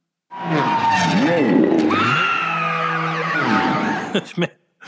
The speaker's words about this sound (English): That little Nuna frog, that is one death scream that thing has. That's why he waited till the cars are racing by, because otherwise it hurts his ears when they scream when he kills them.